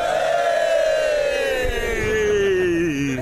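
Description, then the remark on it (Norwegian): A group of people at Varmund fire station, during a calendar photo shoot, cheers together on a count of three in one loud, sustained shout that holds for about three seconds, its pitch sliding steadily downward as the voices fade toward the end. “Denne gangen når jeg telte tre, så skal alle juble.”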